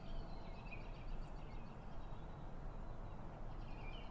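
Faint, high chirps of wild birds caught in a field flutter over a steady low rumble of background noise, appearing in short bursts near the start and again at the end.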